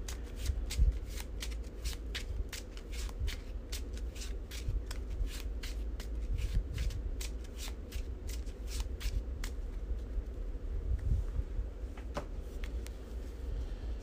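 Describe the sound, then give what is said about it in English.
Playing cards being shuffled, a card shuffled back into a deck, a long run of quick crisp riffling snaps repeating steadily for several seconds before trailing off, with no voices. “Gain a resource, draw a card, take the initiative, shuffle the shortcut back into my deck.”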